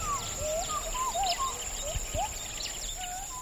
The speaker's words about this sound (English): Where we've stopped, the forest is burnt away, most likely to make way for oil palm trees. In a distant stand of forest, we hear gibbons.